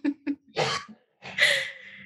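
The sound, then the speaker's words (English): A man coughs: two short, quick hacks followed by two longer, harsh, raspy coughing fits, with no talking. “He's coughing.”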